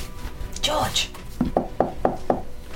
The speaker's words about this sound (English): You head upstairs and there's a room, number four at the back. Cool. Let's knock on the door.